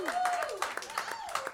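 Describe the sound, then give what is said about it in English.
A short burst of audience applause for a commercial break, scattered claps mixed with whoops and a high whistle, loud for about a second and a half. “How about a big round of applause for our commercial break, everybody?”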